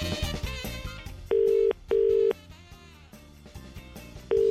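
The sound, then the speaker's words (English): A phone call from the FM 104 radio show to a listener on a private number rings out: loud, steady electronic ring tones come in short paired bursts with a pause between, over quieter background music. No one speaks. “we might be giving you a call on private number right now”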